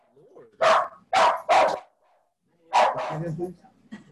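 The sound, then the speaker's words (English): A dog barks loudly at a knock at the door: three sharp barks in quick succession, a short pause, then a longer burst of barking that trails into a low whine. “He is upset. Buddy. It was just a knock at the door.”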